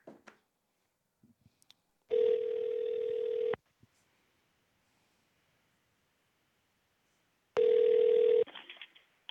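telephone dialing and ringing

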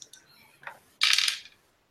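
dice being rolled

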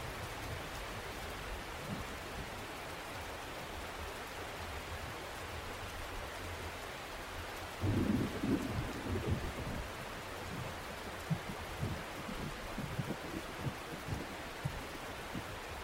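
rain

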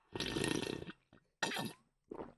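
water sloshing

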